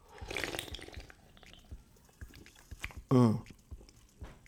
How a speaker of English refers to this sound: You guys normally slurp when you drink sparkling water. Probably not, but Polar is the best. Black cherry.